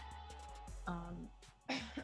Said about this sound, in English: sorry, coughing.